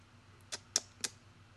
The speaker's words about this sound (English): if you hear clicking on paper, it's because I just want to make sure I'm giving out the right podcast as I challenge y'all.